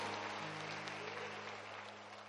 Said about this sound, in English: Get a Lord a hand clap. Come on. Let's give a hand clap to our awesome choir. Come on. And musicians.